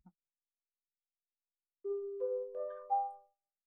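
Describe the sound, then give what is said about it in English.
A school bell chime plays four sustained electronic tones, each stepping up in pitch, clear and moderately loud, in about a second and a half, with silence before it and no talking. “we kind of see the opposite, or not the opposite, but we see maybe, and that's the bell.”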